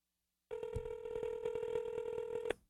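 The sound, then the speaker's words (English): A phone ringback tone plays over a speakerphone as a call to a call-in line rings unanswered, one steady sustained tone lasting about two seconds before cutting off, slightly tinny and mid-level with no voices. “Put it on the speaker so you can hear it.”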